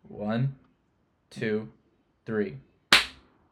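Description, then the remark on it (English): Three short spoken words, a count of one, two, three, in a steady rhythm are followed by a single sharp, loud hand clap that fades quickly. “And should we clap?”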